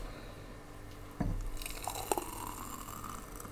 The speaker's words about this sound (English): So, now... take your glasses. And then... we're going to pour our smoothie concoction. Our cocktail concoction. Our fizz buzz cocktail.